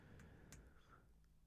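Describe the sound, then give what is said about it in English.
A few light, scattered keyboard clicks tap out irregularly over a steady low room hum, fairly quiet, with no one talking. “is typing.”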